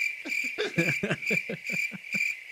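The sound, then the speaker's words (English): A crickets sound effect played from a soundboard: a steady, shrill chirping of crickets runs throughout, with a regular series of low, throaty pulses thumping beneath it like a night-time nature recording. No voices are heard. “His lawyer remembers when I used to have crickets on the soundboard. I do have crickets.”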